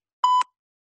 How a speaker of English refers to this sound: We now need you to cough twice when you hear the tone. Cough twice when you hear the tone.